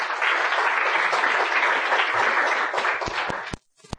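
Steady applause inviting a guest to join the program, filling the air for about three seconds, dense and even, then thinning into a few separate sharp claps before stopping.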